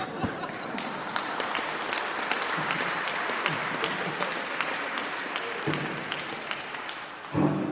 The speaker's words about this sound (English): Don't I get applause for that?